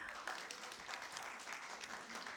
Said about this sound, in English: You can sit down now. Thank you. Round of applause.